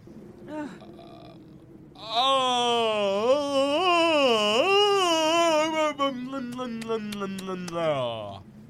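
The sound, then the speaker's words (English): A long, theatrical vocal yawn stretches out for about six seconds, loud and tonal with a wavering pitch that slides downward as it trails off, preceded by a couple of brief voiced sounds. “That's how I yawn.”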